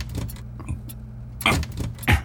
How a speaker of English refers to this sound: This drawer is really stuck. Can't seem to get the drawer open.